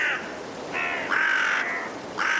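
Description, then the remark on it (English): Harsh caws from five carrion crows sound in a loose overlapping series, the birds calling back and forth in a cold woodland at dusk in Woodchester Park, Gloucestershire, England, over a steady rush of blustery wind. “Five carrion crows calling through the blustery winds in Woodchester Park in Gloucestershire, England.”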